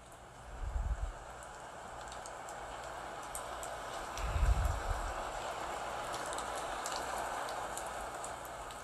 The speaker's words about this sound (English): As it begins to start raining, I pick out a nice book.